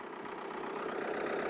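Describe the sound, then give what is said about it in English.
A 1947 Ford tractor engine idles in a steady, even rumble, fairly loud, with no voices over it for the short stretch. “Driving a 1947 Ford tractor.”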